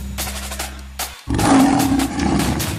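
A low, steady rumble gives way to a loud lion roar that swells suddenly and holds with a rough, growling texture until the end, with no talking.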